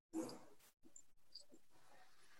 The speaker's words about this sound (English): My dog is currently going crazy. Honey, you have to go upstairs soon. Because the dog is going crazy.